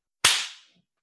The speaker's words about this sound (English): Okay. I'm going to clap in real quick.